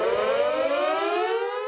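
A loud fire station alarm siren goes off at a fire hall during a ladder and hose drill in the yard, wailing in one long, steady tone that slowly drifts downward in pitch, rich with buzzy harmonics, with no voices over it.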